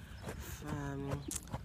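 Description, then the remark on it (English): A horse's hooves clop at a steady walking pace as it warms up during a Saturday riding lesson at a horse farm, a few soft thuds on a dirt surface, with a voice speaking over the footfalls. “I'm at the horse farm. Today is Saturday. The girls take horse riding lessons every Saturday.”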